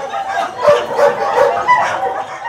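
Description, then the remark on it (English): Several greyhounds bark and yip in quick, overlapping bursts at the Mardi Gras race track as eight dogs come from the kennel and head to the starting block for the fifth of the day's 15 races, the sharp calls repeating every half second or so over a steady background hubbub. “Down on the track, eight more dogs have come from the kennel and are heading to the starting block for the fifth of the day's 15 races.”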